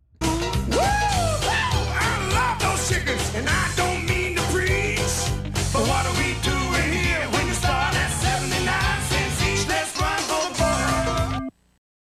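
A loud, driving rock and roll song with pounding rhythm, busy instruments and a raspy, screeching lead vocal, playing continuously before cutting off abruptly near the end.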